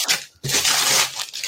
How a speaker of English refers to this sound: Do I need to do it in a neat way? Just tear the paper off? No, you can do what you want, mate.